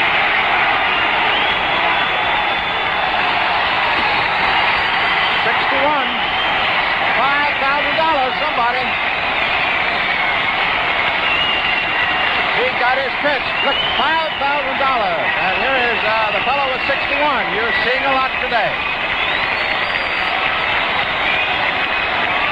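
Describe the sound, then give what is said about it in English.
A packed stadium crowd roars and cheers loudly as Roger Maris hits his 61st home run in a New York Yankees game, with Red Barber on the call, a dense, unbroken wall of voices lasting over twenty seconds with individual shouts and whoops rising through it. “He just let the crowd do the talking.”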